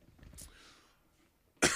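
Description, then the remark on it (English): A single harsh, loud cough bursts out near the end after a softer throaty rasp and quiet breathy sounds, with no talking. “I got a cough like you wouldn't believe.”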